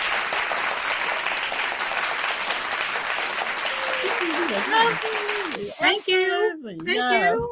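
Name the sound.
applause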